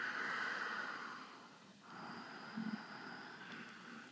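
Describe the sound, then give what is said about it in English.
Two long, raspy snorts made in the back of the throat while breathing through the nose, fairly quiet, a person imitating snoring, with a brief pause between them and a low rattle in the second. “If you can mimic snoring, the sound of snoring, like, it's the same muscles, same muscle groups.”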